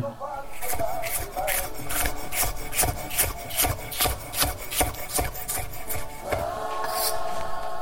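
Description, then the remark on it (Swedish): Raw artichoke being thinly sliced with a knife, to be eaten raw as crudo: a steady run of quick, crisp, rasping cuts, several per second, continuing evenly throughout with no talking. “Så att man skivar de här tunt nu.”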